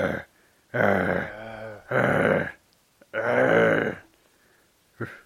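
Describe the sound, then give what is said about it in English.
A person's voice imitates a mummy with a zombie-like groan, three long, low, rasping moans separated by short pauses, fairly loud, ending with a brief grunt. “I want an impersonation of a mummy.”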